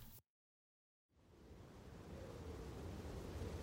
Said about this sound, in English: It is the winter of 1649. A bitter wind whips along the River Thames, howling through Traitor's Gate at the Tower of London.